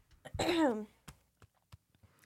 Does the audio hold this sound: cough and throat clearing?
yes